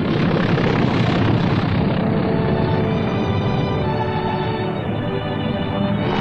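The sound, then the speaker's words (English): A propeller airplane roars in a steady, loud engine drone that eases slightly in pitch as it passes, the first plane coming down to land on an airstrip cleared by Seabees during fighting, 24 hours after they started work; no voices. “The first plane landed just 24 hours after the Seabees had started to work.”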